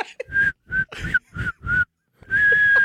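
A person whistles a short tune, five clipped bright notes in a bouncy rhythm, a brief pause, then one long sustained note.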